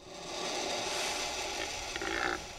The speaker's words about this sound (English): Most birds make sounds with their syrinx, but a turkey vulture doesn't actually have one.